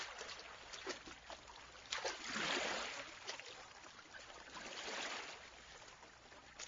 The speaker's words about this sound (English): Daniel, where are you going? Where are you rowing to?